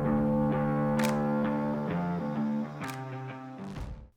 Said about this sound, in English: Yes, I love to scare you guys with the siren sound.